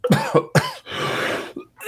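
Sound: cough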